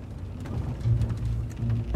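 Steady, hissing rain pours down while a deep, rolling thunder rumble swells underneath, loud and continuous across the whole stretch, with no voices.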